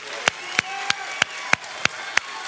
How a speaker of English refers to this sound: So if you're ready, on the count of three, just stand up and let's give God a big, awesome, amazing clap offering. Are you ready? One, two, three. Woo! Amen.